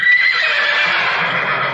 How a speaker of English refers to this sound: And every time her name is said, horses whinny and neigh and are scared of her.